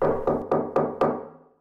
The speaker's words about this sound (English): He knocked on the door.